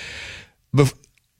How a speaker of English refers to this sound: Is this like a sick sniffle or sneeze? It's just allergies, man. It's just allergies.